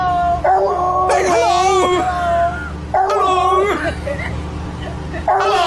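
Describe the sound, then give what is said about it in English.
A dog lets out a few drawn-out, voice-like howls whose rising and falling pitch sounds much like someone saying hello, with a faint murmur in the background. “It's the dog that clearly says hello.”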